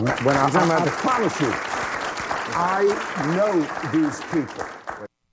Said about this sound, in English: And of course, Bill Maher's audience is clapping.